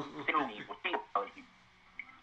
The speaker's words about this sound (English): That's why his phone fucking up right now.